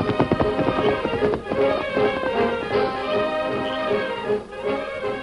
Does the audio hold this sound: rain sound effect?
no